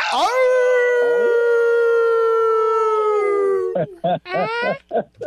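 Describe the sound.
A loud, sustained howl imitated by human voices on an ESPN radio show to bring in a caller, holding a long steady pitch for about three and a half seconds before sliding down, followed by a few short bursts of excited vocalizing.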